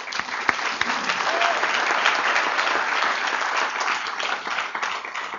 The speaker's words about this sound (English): who's here, and I'd like a round of applause for her.